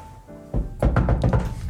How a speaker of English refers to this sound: But I'm still kind of deciding. But there's a knocking on the door.